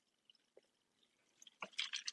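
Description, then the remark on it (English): A few faint drips, then coconut water starts pouring on top of a mixed drink in a glass with a bright, splashy trickle that continues steadily. No one speaks. “So now we're going to go coconut water on the top.”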